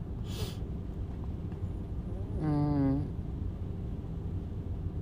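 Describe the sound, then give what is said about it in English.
Rain drums steadily on a car, heard from inside the car, in a dense, continuous wash of patter. A brief hiss cuts in early, and a short wavering tonal sound rises and fades midway. “Can you hear the rain? I sit in the car.”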